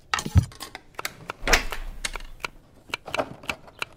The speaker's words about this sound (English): Choppity, choppity, chop. Chop, chop, chop, choppity, choppity. Chop, chop, choppity, choppity. Should you be using that knife? My mom lets me. Okay. I have to chop them. My teeth are too wiggly for big bites.